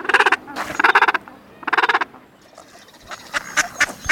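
Gentoo penguins calling: three loud, harsh, pulsing brays in quick succession, followed by a scatter of fainter overlapping calls from other birds. No one speaks.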